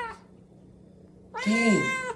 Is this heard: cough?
no